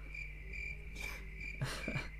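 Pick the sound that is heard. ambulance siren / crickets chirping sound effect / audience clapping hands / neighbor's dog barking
crickets chirping sound effect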